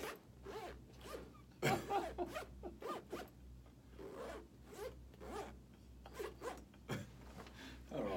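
A zipper is rapidly zipped up and down over and over, played like a musical instrument, in a jerky, rhythmic pattern of raspy bursts, fairly loud, with a faint low hum underneath.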